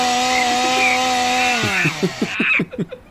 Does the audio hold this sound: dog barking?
no